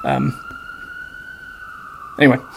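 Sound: emergency vehicle siren passing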